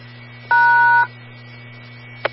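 A single steady DTMF touch-tone beep, sent to drop an amateur radio autopatch phone call, about half a second long and fairly loud, sounds over a constant low electrical hum, followed by a brief faint click.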